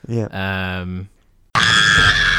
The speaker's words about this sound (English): If this pod goes for an hour and 22 minutes, I will, at just varying points in this pod, just insert a scream.